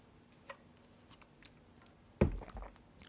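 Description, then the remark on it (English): Someone takes a sip of Coke: soft clicks in near silence, then a loud wet slurp and a brief swallow-like burst. “Let me get a sip of my Coke.”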